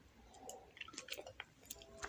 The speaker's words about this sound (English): Sipping some coffee right now, so I'm going to have some little sip breaks. I hope they don't bother anybody. Fresh brewed a pot of coffee, and I'm sipping on that like a motherfucker.